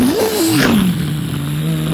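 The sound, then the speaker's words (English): A car engine revs up loudly, its pitch climbing then dropping and settling into a steady idle hum, sustained, with no voices. “So they hopped into their big old school bus with the whole gang, the whole fam. And they got in the car.”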